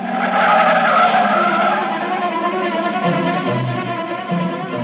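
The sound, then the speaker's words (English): A car peels away with loud, sustained tire squealing over a revving engine, the screech holding steady for the whole stretch with no voices. “You keep saying things you shouldn't, and she lashes out with an answer, and before you know it, you've stormed out of the house, and you're taking it out on the car.”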